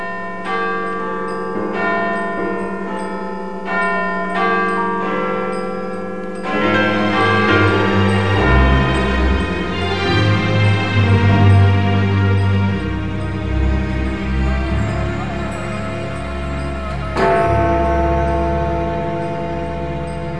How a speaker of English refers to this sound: And to mark that moment, we will cross live now to Big Ben here in London as the 1 o'clock deadline approaches.